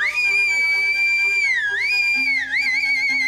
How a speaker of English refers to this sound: And now, while the whole assembly, the apes included, were convulsed with laughter, the jester suddenly uttered a shrill whistle.